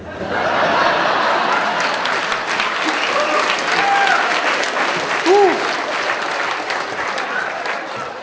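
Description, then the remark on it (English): Sustained applause from a sizable audience fills the room at a steady level, with a few scattered whoops and brief voices rising out of the clapping. “I was kind of hoping that would not draw an applause line.”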